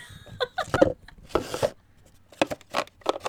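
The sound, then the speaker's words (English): Stiff cards of poster-board-weight paper cardboard being handled for ASMR, with a run of short crisp taps and scrapes, a longer rustling slide partway through, and no talking. “It feels like some kind of cards. Is it made of paper?”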